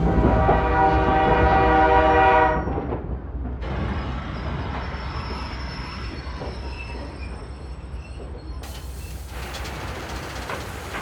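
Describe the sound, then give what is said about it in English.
A steam train's horn blasts loudly for about two seconds, then gives way to the steady rumble and clatter of a rolling train arriving at Sarajevo's train station, with no voices. “The royal couple exits Sarajevo's train station about 9:30 a.m.”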